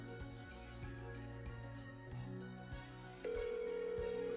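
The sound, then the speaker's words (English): A steady electronic phone ringing tone of an outgoing call cuts in near the end, loud and continuous, after a few seconds of soft, humming tonal background with no voices. “Let's see if we can get good old Nick Vile on the phone”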